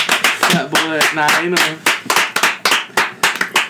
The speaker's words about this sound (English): And that was us clapping our tummies.